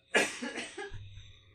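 A sharp, loud cough bursts out, followed by a couple of smaller, rougher coughs that trail off into a low rumble, heard close and on its own.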